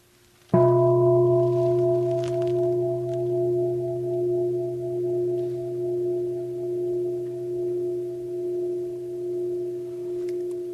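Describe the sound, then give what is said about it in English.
A single Tibetan bell is struck once and left to ring, its clear tone hanging on for about ten seconds with a slow, wavering pulse as it resonates. No voices are present. “The bell is just a concept.”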